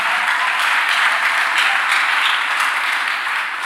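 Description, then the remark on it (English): An audience claps for the Lord together in a steady, dense burst of applause that stays loud and even for a few seconds, with no voices standing out. “If you are going to clap for the Lord, give a good clap of.”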